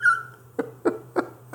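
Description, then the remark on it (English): A female pit bull lets out a short high whine, then four quick soft huffing snorts at a steady pace, with no talking. “I swear to God, if y'all can see this dog right now.”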